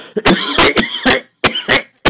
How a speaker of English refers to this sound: I don't know. Something in here is making me cough over here. Maybe there's something allergic.